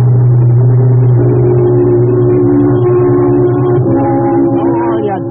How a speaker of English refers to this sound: Oh, that car that just passed is going like the devil.